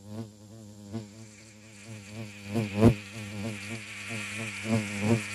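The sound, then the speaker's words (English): A spider wasp buzzes steadily in flight, its droning hum wavering in pitch and swelling louder a few times as it moves around; no talking. “Ooh, spider wasp.”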